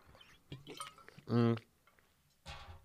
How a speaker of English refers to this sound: But after I take a sip of coffee, I usually always have to take a sip of water because I'm scared that it's going to stain my teeth and I'll look like one of them fucking dirty Brits